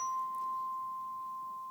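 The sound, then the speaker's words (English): A chime rings with one clear, sustained metallic tone that hangs steadily and fades only slightly over the moment, with no voices present. “These aren't actual bells. What's this called? Chime. So you've got a chime here, right?”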